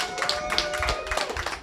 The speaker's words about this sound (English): Big round of applause.